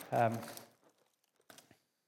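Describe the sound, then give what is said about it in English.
Books and pens being handed out to a group: a brief vocal sound at the start, then a short burst of crinkly, papery rustling and handling noise before it falls quiet. “I want to hand out these books.”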